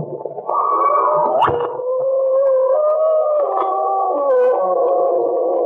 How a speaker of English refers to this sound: The Emerson Jet Company, makers of Brummer Seltzer, invites you through the creaking door into the inner sanctum for a scented, transcribed Christmas story starring Frank Sinatra.